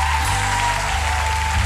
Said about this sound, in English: Oh, if you just prayed that prayer for the first time, oh, we want to clap for you. Oh, we're proud of you.